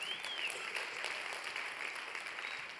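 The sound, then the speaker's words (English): An audience claps steadily, a dense wash of many hands at an even level throughout, with no voices rising above it, applauding during a sermon the news that the Savior of the world has been born. “And what, that's right, we can applaud for that.”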